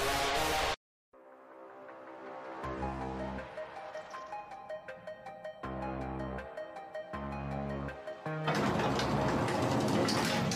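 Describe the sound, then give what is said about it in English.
An elevator door grinds shut with rapid clicking, ratcheting ticks and heavy low thumps that come in pulses, ending in a louder rushing clatter. It is fairly loud, with no talking. “And the elevator door closes behind you.”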